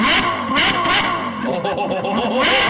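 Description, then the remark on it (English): A motorcycle engine revs loudly and steadily, its pitch rising and falling in quick surges, with raspy bursts of exhaust noise. “I mean, yeah, it sounds like a motorcycle.”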